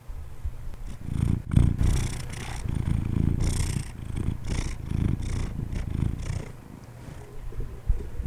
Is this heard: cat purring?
yes